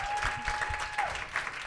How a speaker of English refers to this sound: Well, I think you both did a great job. Round of applause for all four of them right now.